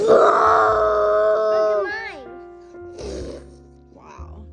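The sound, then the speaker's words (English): A child's voice does a drawn-out, strained roar imitating a lion, holding loud for about two seconds before sliding down in pitch, followed by a couple of shorter, breathy growling bursts. “Do your best... What's your best lion?”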